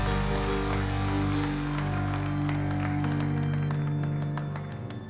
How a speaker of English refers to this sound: Come on, give him a hand clap of praise this morning.